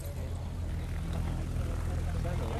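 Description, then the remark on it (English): A propeller aeroplane engine starts and roars before a first free flight to Cork, a loud, steady low drone with a throbbing hum that holds constant and unbroken throughout. “and you can hear the roar of my aeroplane starting.”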